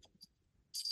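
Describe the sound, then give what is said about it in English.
A few soft clicks and taps, then a sudden burst of harsh, hissy scraping as a cat drags a microphone off a table, ending abruptly. No one speaks. “That was the cat pulling the microphone off the table.”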